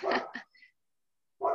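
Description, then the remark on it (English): A dog barks a couple of times in quick succession, then a brief faint whine, a pause of silence, and another sharp bark; moderately loud, with no talking. “I did say two dogs, right? He wants to just be on the podcast and give his.”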